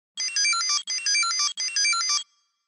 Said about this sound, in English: Is it a Tamagotchi? You got it.